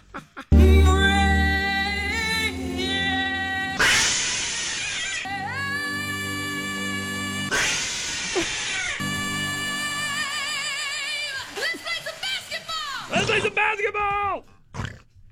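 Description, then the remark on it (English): A cat yowls loudly in a string of long, drawn-out wails that rise and fall in pitch, broken by brief pauses and ending in shorter, wavering cries. “It just so happens Cat Wrong Hole fits in perfectly, though.”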